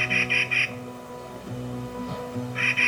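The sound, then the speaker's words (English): A Clark's Nutcracker gives harsh, grating calls in two bursts of three rapid notes each, fairly loud, with a steady low hum underneath between them. “That's the Clark's Nutcracker.”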